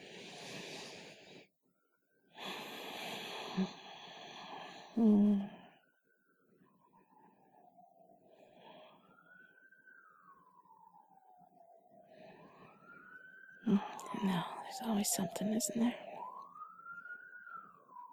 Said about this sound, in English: Like that siren. I don't know what it's going to, but there's something bad happening. Oh, I hate that.